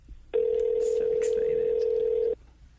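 A phone call to someone up in Motown connecting: a single steady ringback tone holds for about two seconds and then cuts off, clear and fairly loud over faint background noise.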